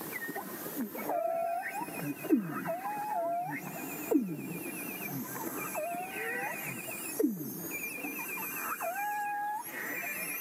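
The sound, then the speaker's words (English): Beluga whale calls: overlapping high whistles, squeaky chirps and swooping downward glides, with a buzzy pulsed tone recurring every couple of seconds, steady and continuous with no voices. “So let me play you a little clip that may give you an idea of why they were called the canaries of the sea.”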